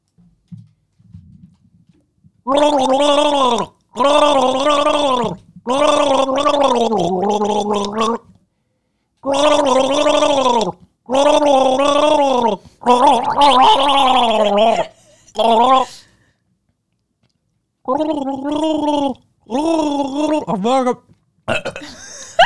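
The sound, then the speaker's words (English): Someone gargles water with the mouth facing up while voicing a tune from the film Aristocats, producing a string of about ten bubbly, warbling bursts, each roughly a second long, loud, with short silent breaks between them and wavering pitch. “Don't talk while your mouth is open and facing up and you have water in it.”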